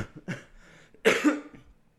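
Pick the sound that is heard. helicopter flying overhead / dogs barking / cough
cough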